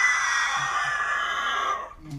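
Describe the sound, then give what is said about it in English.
A person vocally imitates the scream of a monster shot in its eye with a short bow: one long, shrill, strained shriek held for nearly two seconds, loud, ending with a sharp breathy cutoff. “Straight into its eye, it screams, it's...”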